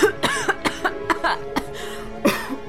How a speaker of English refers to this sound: Oh, poor …. Sometimes a little cough can be so hard to get rid of.